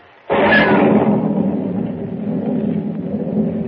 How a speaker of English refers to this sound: Lightning cleaves the black sky and thunder crashes as Pug, unable to swim, drops like a plummet into the raging, storm-swept sea.